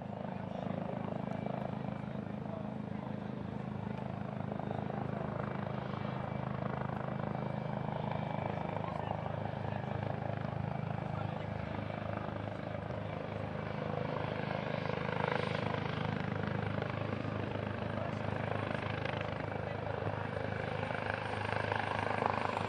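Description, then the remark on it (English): A helicopter drones steadily for the whole stretch, its rotor thumping in a constant low pulse as it passes overhead, with faint, indistinct voices in the background. “In the background, we've got one of those helicopters.”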